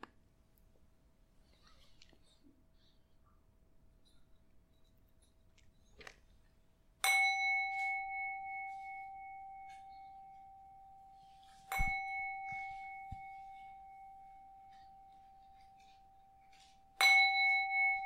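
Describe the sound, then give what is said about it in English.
A meditation bell is struck three times, each ring a sharp, clear strike that blooms into a long, steady shimmering tone and slowly fades before the next. The strikes are evenly spaced, with no voices. “I will now ring the bell 3 times.”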